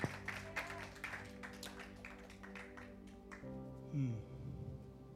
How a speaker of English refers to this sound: Let's give him a round of applause for Kobe.